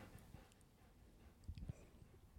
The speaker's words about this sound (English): Can you guys hear the dog panting?